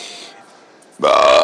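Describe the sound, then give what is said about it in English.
A loud, sudden burp bursts out after a quieter stretch of low murmuring, holding a steady, droning pitch for about half a second. “Excuse me, good lord. I'm a pig.”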